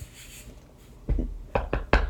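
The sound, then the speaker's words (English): Four sharp knocks on a wooden surface: one, a short pause, then three quicker raps in a loose rhythm. Nobody speaks, and only faint room noise sits underneath. “Knocking on wood that no more come in.”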